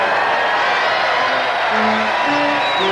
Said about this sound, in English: The roar from the crowd is deafening as 747 calls his bruised and battered team into the huddle.